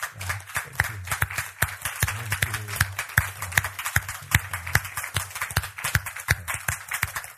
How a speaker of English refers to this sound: Can you guys stand? And hopefully it's a lot, but can you guys just stand up so that those who went can applaud you and say thank you, guys?